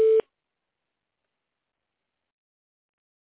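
A single short phone-line beep, a steady mid-pitched electronic tone lasting a fraction of a second, followed by silence.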